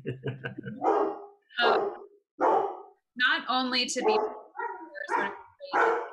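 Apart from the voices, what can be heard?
dogs barking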